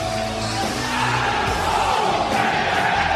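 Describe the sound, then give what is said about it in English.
A loud wrestling crowd chant plays as a phone's notification tone, a soundbite saved on the phone, with many voices shouting in unison with rhythmic, harmonic bellows over a steady roar of noise. “Not only is it that soundbite, it's the same exact file that I just emailed to myself and saved it on my phone.”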